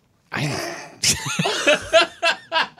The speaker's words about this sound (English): Wow, like I was really like rolling that koan over and over in my mind, and the sneeze just like took me out of that meditative state.